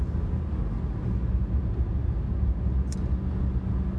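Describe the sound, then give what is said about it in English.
A steady, low rumbling drone fills the inside of a moving car, with road and engine noise holding constant throughout and one brief high click near the end. No one speaks. “I'm in the car.”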